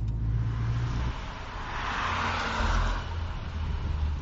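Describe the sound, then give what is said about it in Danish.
A new Honda Civic Type R hatchback with 310 horsepower driving: a steady, fairly loud engine drone with low rumbling tones and road noise that shift in pitch as it moves along. “Prisen for den nye Honda Civic Type R, den er på 590.000 kroner.”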